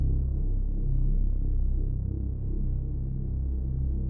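A deep, steady low-frequency hum drones continuously with a faint throbbing pulse, loud and rumbling, with no voices present: the seismic hum of a magma pocket contracting off Mayotte as it pushed more than 2 cubic miles of magma out onto the ocean floor.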